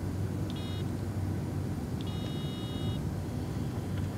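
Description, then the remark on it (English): Two electronic beep tones from a handheld Simon memory game, one short and one held for about a second, sounding fairly faint over a steady low rumble of background noise. “Okay, and then I was going to just play like a couple seconds of this Simon game so folks can see it.”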